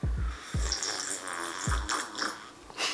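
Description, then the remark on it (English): Quiet sipping of tea: a few soft gulps and swallows with brief slurping hiss between them, spaced unevenly over a few seconds, with no talking. “Wow, I need to take a sip of tea.”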